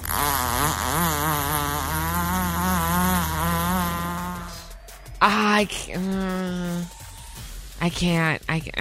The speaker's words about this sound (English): So here's the story behind this sound. Is apparently there was a horse on TikTok who had a pretty upset stomach, and he couldn't stand up. And so what they did is they called the vet